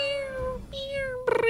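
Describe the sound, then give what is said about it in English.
A person imitates a cat's meow: one long, drawn-out nasal meow that shifts pitch midway and ends in a louder, wavering yowl, with no other talking. “See, I can do it too, and I'm not a cat.”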